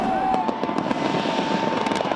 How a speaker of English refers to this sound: As the clock struck midnight in Australia, more than 1 million people watched a 12-minute fireworks display focused on the Sydney Harbour Bridge.